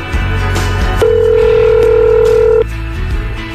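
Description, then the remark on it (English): A telephone line sound as someone dials a call: one steady electronic tone holds for about a second and a half over a low background hum, clear and fairly loud, with no one speaking. “Dial us up.”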